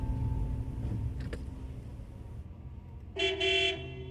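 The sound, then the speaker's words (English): A low engine rumble idles for several seconds, then a loud, bright car horn blares in a single half-second honk with a slight stutter before the end, honking at a driver idling at a green light. “Drive like you have a license, dickhead! Idling at a green light.”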